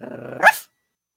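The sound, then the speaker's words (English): A dog growls low and steadily for a moment, then lets out one sharp, loud bark before everything falls silent. “We meet Tito, Alexa's dog.”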